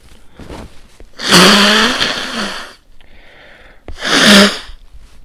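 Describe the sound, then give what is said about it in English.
Two loud sneezes: the first a long, forceful burst, then a short pause before a second, briefer sneeze. No talking in between. “Oh shit, I need to sneeze.”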